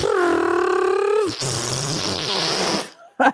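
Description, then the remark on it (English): A voice imitates a pastor farting in an aisle: a long, droning buzz gives way to a wet, sputtering rasp lasting a couple of seconds, then a short burst of sound at the end. “The pastor was there farting.”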